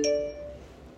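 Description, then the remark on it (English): A single computer notification chime rings out, a bright cluster of clear tones that fades within half a second, leaving only faint low background hum behind. “Gotta love that when technology decides to chime in at that exact right moment.”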